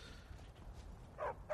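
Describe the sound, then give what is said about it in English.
A video game companion dog named Vigilance barks twice in quick succession near the end, short sharp yips standing out from a low, steady background rumble, fairly quiet overall with no one talking. “I've also got Vigilance, the puppy dog.”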